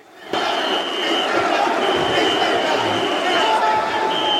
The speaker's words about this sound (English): Van Daminator, and then he spills out, goes through a table, and the crowd goes bananas.